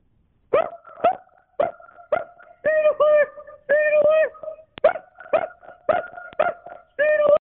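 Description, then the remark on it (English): A person imitates a dog, barking out a song melody in a rhythmic series of short yelps and longer held, pitched barks. Loud, with no other sounds around it. “I think that was a person pretending to be a dog barking the song …”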